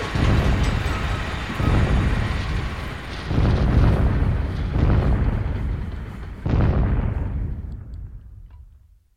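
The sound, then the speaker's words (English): A string of five big, booming explosions, roughly one every second and a half, each rumbling loudly before the next hits, with the last blast slowly fading to silence. “The kettle boiling. Big explosions.”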